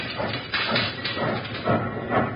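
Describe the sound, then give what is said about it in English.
A steam locomotive with its throttles wide open chugs hard, its loud, rough exhaust chuffs pulsing in a steady rhythm over a constant hissing roar, with no voices. “Well, I've got these throttles wide open. Go, you iron horse!”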